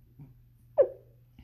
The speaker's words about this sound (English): I just burp, hiccuped. I don't even know what the fuck that was. I really hope y'all heard that.